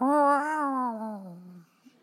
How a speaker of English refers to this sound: Oh, look, a kitty cat. Bobcat, wait, I've heard about this cat. This is Murder Cat. He was born as a character in a sketch on WITS and then took physical form and moved into the Fitzgerald Theater.